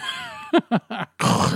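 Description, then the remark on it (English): A voice imitates the heavy, labored breathing of an overweight man who sat behind the speakers in a theater: three short, throaty gasping grunts in quick succession, followed by a longer, loud, raspy exhale. “Except for the guy behind us that kept breathing.”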